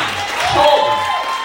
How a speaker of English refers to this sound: Round of applause